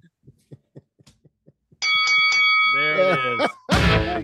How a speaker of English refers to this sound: Ring the bell. Ding, ding, ding. Hold on. Hold on. I didn't know I was going to ring the bell.